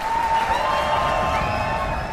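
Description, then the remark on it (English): Steady applause from a crowd, with cheering and what may be a whistle, holding at a constant loudness for the whole couple of seconds. “So let's clap it up for these guys.”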